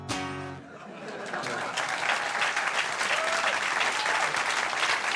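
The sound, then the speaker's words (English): A crowd bursts into sustained applause, a dense wash of clapping that swells and holds steady for several seconds, with a brief voice at the very start before the clapping takes over. “He could just sit there and I think he deserves a round of applause.”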